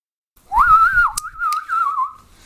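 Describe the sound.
A person whistles one clear sustained note that swoops upward, wavers and slowly drifts down over about two seconds, with no talking.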